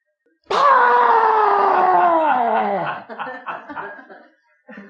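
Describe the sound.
A man's voice, imitating a person who came roaring into a foyer like a wild animal, lets out a long, loud, growling roar, falling slowly in pitch for about two and a half seconds before breaking into short rough grunts.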